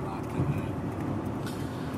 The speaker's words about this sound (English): Hopefully the audio on this is going okay right now. We're recording in the car right now. We're going to look into getting maybe a mic on the trip right here because it's picking up a lot of the road noise.